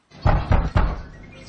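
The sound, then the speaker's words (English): Three heavy, forceful bangs on a house door in quick succession as a man tries to break in, loud, each a booming thud with a short decay, followed by a lingering low rumble. “It's my ex. He's trying to break in.”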